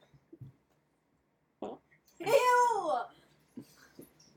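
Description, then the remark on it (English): A drawn-out, squeaky fart lasting under a second and wavering in pitch, with a few soft, short knocks before and after in otherwise quiet surroundings. “I'm going to fart now.”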